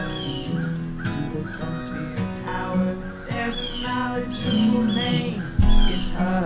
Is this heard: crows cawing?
yes